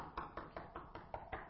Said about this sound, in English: In the world in which we live, I go out and I knock on a door.